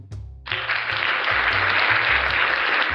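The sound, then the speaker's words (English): After a brief low tonal hum, loud applause from a show audience for the special guest erupts all at once and holds steady: dense, continuous clapping from a crowd, with a low droning tone running underneath. “Round of applause for Vix, ladies and gentlemen.”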